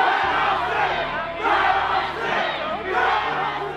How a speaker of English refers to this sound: A burly dude in a Hawaiian shirt at the front of the crowd, screaming to be let in.